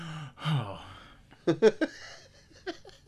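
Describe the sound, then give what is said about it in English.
A man breathes heavily: a long breathy exhale followed by a cluster of three quick, sharp gasping breaths, then one more short puff, with no words spoken. “Breathing heavy.”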